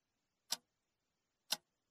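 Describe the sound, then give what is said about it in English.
A clock ticks twice, crisp dry clicks spaced exactly a second apart, heard alone with nothing else around them. “And we're back to watching the clock.”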